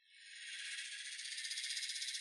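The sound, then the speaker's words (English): Cicadas buzzing in a dense, high-pitched drone that swells in at the start, then holds steady with a rapid pulsing shimmer, the daytime sound heard in the heat in Australia. No voices. “But that's those are cicadas, not crickets.”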